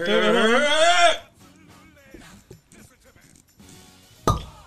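A loud, wavering high-pitched vocal squeal opens, followed by quiet clinking and shuffling, then one sharp cork pop from a bottle of alcohol near the end, the drink spilling over a shirt and leg.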